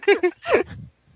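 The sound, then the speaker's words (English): A baby throws up onto a person's face: two quick voiced gulps, then a longer wet, gurgling heave that trails off into quiet. It's brief and fairly loud, with no talking. “She just threw up on my face.”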